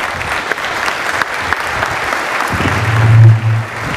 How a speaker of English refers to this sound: Will you please help me welcome with a very warm, supportive applause